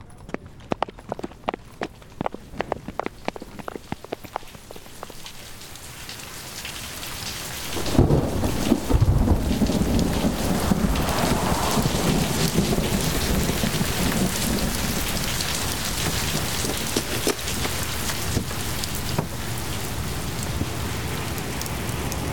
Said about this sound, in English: Oh, dear. Rain again. We'd best be on our way before it pours.